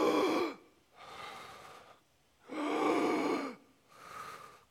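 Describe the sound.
Four heavy breaths alternate between loud, harsh inhalations and softer exhalations in a steady rhythm, like someone gasping for air, with no talking.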